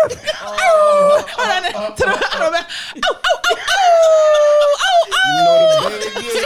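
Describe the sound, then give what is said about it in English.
Several voices imitate a dog, drawing out long wavering howls between bursts of yelping barks, loud, with little else in the background. “Howling in the moon.”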